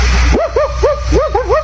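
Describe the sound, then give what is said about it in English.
A rapid run of short, bright yapping barks, about half a dozen in quick succession, fairly loud, apparently a human voice imitating a dog. “As that dog checking in again, the one that sounds just like me”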